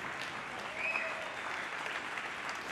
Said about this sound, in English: That's a golf clap.